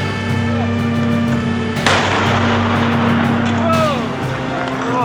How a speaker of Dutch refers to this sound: Meters hoge vlammen en explosies. Toen de brandweer even voor tweeën bij de leegstaande fabriek aankwam, stond het pand al in lichte laaien.